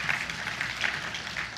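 An audience claps together in a steady, dense patter of many hands, a bright crackling wash of applause that holds an even loudness throughout, with no voices heard over it.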